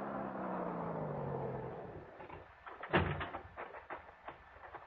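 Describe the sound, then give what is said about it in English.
A hot rod car engine rumbles steadily for a couple of seconds as it comes down a soggy wagon road, its pitch sliding lower, then gives way to a sharp knock and a scatter of clattering, scraping noises. “And I heard it. The hot rod coming down the soggy wagon road.”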